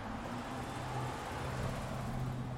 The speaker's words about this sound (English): When I have a stereo mic, I can give ye a 3D aural image of what I'm hearing, you know. Here's a car.